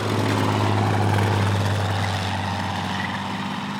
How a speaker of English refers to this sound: back on a Tennessee hillside, just in time to roll frantically out from under the tracks of the roaring tank that had come cresting blindly through the woods and over the spot where I'd been asleep and dreaming a moment before.